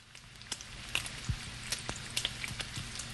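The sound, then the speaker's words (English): A sizzling burn effect: steady crackling hiss scattered with sharp pops and spits, like something searing on a hot surface, continuous for a few seconds. “Agony and horror drove him to his knees beside the desk. Sizzling.”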